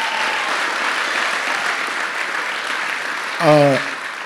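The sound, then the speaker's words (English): A church audience applauds their pastor in a steady, sustained wash of clapping for about four seconds, and one voice briefly rises above it near the end. “I know y'all clapped once for her, but Paul said, it is good for you to hear this again.”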